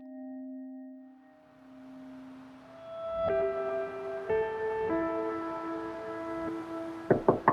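Sustained electronic tones hum and shift, then three quick, sharp knocks on the front door of a brick duplex land loud right at the end.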